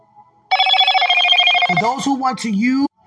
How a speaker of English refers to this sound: I did not expect my phone to go off, Father, at 4 in the morning. Thank you for the notification.